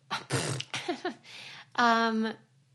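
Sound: throat clearing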